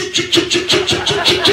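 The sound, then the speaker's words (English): A voice imitates a helicopter coming down to land with the mouth: a fast, steady chopping pulse, about eight beats a second, with a buzzing low tone under hissy bursts, fairly loud and continuous. “he made the sound of a helicopter with his mouth.”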